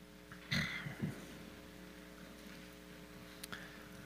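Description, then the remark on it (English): Soft, scattered rustles of Bible pages being turned as a church audience turns to Psalm 101, with a couple of brief papery swishes early on and another faint one later, over a steady low electrical hum with no one speaking. “I hear a lot of pages turning, which is wonderful.”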